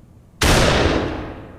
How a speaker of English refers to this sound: Ren's gonna come back because she heard a gunshot.